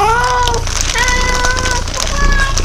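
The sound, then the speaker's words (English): Cats, one of them named Walter, crinkle and rustle a thick plastic Foot Locker bag, a steady crackly scrunching that runs throughout, with a few drawn-out meows rising over the noise. “Nice, thick footlocker bag. Yeah, thicker plastic.”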